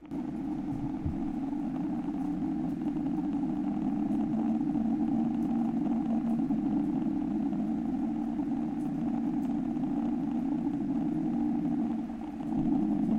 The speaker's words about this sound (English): the whistle is similar to other volcanic sounds previously recorded